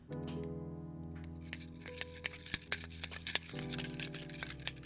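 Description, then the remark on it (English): A bunch of metal keys to a new studio, with a small plastic fob, jingles and clinks in irregular bursts, bright metallic chinks scattered over a steady low hum in the background. “See, not only is it metallic keys, but it has a little plastic thing on it as well.”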